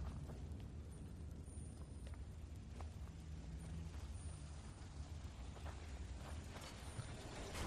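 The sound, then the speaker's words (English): A fireball explosion in the final chamber of a cave gives a steady, low roaring rumble sustained for several seconds, with scattered crackles and clicks on top; no voices are heard. “Fireball. Watch your ass.”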